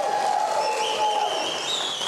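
A studio audience on Mike Huckabee's show claps and cheers for the show's musical guests in a dense, steady wash of applause, with a few high whistles and shouts rising above it, holding at an even level for about two seconds.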